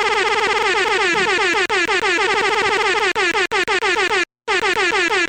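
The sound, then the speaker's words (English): A loud air horn sound effect played from a phone soundboard and clicked rapidly blares over and over in rapid-fire bursts, the repeated blasts piling into a chaotic, continuous honking with only a brief gap near the end. “At this point, we only have one sound, and it's coming from my phone, and it's the grab air horn, so that's going to be fun. And you can also click it really, really fast, so it's like...”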